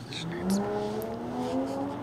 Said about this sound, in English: Hear that loud ass car, everyone? I hear it.